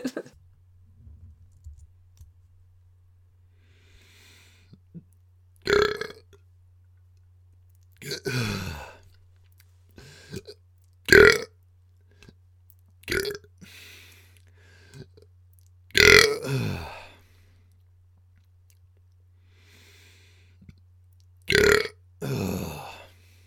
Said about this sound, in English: And now you have it recorded and ready to go if you need it. A polite ladylike burp.